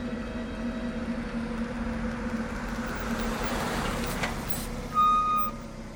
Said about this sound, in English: Did you hear that? I think I just heard a car pull up in the driveway. I believe they're home.